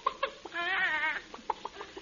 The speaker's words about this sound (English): Costello, what are you doing with that chicken? Oh, we use only fresh eggs. Now, just sit back while I put Betty on your head. Go ahead, Betty. Do your stuff.